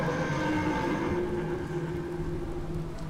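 A deep, continuous rumbling like the ground shaking, with steady droning tones layered over heavy low-end noise. It holds at an even, loud level throughout, and no one speaks.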